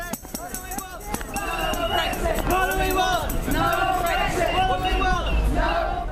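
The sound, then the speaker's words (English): A crowd of about 800 at an outdoor Brexit rally on the Ipswich Waterfront, Suffolk, setting off from the University of Suffolk with placards, flags and banners under grey skies. Many voices merge into a loud, steady hubbub with shouts and chant-like calls, opened by a few sharp rhythmic beats. “Waving placards and flags, the 800-strong crowd set off from the University of Suffolk in good spirits, with their banners brightly contrasting the grey skies above.”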